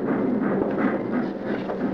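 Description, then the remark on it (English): A horse-drawn cab buggy rolls in at the railroad station of Dorning, soft hoofbeats clip-clopping over a steady, dense rumble of wheels, with no voices. “It's a cabbie. Buggy's all ready for you, folks.”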